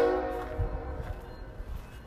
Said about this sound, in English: The train is passing by and you can literally hear it. I can see it.